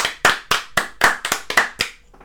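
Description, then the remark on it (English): About eight sharp, loud hand claps in a brisk, mostly steady rhythm with one quick double clap near the middle, then a faint tap as they stop. “Mm-hmm, girl, clap.”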